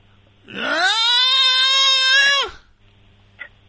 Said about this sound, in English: Look, it's a weird choice. That's a weird choice for anything, to scream. I know, for some reason, when I heard it on the radio, it made me laugh out loud. The song is 2 minutes and 40 seconds long, and he's screaming 2 minutes into it.